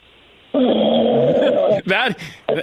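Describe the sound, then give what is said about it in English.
An injured elk, lying on the ground bleeding, lets out a loud, drawn-out bellow, rough and groaning, heard over a tinny phone line, then two shorter strained calls after a brief pause. “There's an elk laying here bleeding. From the... Sounds like an angry seal. Elk.”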